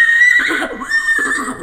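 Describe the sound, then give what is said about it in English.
A person does a loud, convincing horse whinny with their voice, a high quavering neigh that wavers and rises in two bursts, with no other talking. “Who did the horse? That was me.”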